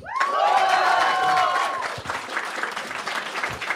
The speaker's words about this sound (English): Okay, all right. Round of applause.